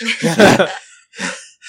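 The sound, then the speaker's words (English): A voice imitates a sentry's heavy, labored breathing: a long, voiced huff followed by two shorter, breathy pants, loud, with no words spoken. “The sentry's just standing there, like, breathing hard, like, having had his carry moment.”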